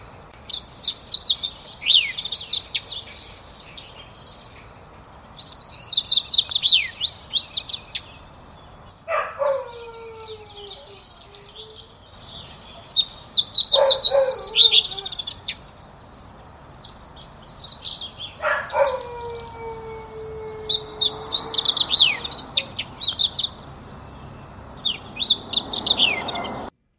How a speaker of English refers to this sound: So you can kind of hear those whistling, sliding whistles that the fox sparrow does.